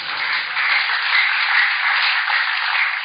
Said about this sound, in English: It's a good place for you to clap hands for the Lord.